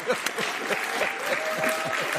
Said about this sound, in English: Hear, hear, Doc. I'm giving you an applause now.